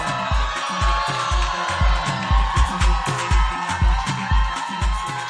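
An audience at a church testimony gathering claps along in a steady, even rhythm, roughly two beats per second, with a thumping low beat underneath and a constant wash of crowd noise; no one speaks.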